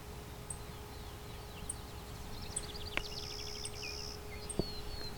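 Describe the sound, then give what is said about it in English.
Faint, sharp tick calls of a female clay-colored sparrow carrying nesting material in her bill repeat roughly once a second, while another bird's buzzy trills and a low steady hum run underneath. “Got, I think, a female clay-colored sparrow in front of me. Some food in her mouth, just ticking.”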